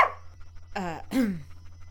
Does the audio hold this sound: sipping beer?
no